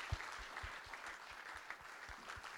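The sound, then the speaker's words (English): A crowd applauds fathers steadily, many hands clapping at once in a dense, continuous patter, with a few louder individual claps standing out in a loose rhythm. “There you go, guys, and let's give them a round of applause as they go down.”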